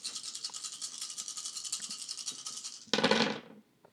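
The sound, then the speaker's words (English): Eight dice, including one hunger die, rattle steadily with a fast, dry clatter for about three seconds, then spill out in a louder burst that quickly dies away. No one speaks. “Eight dice.”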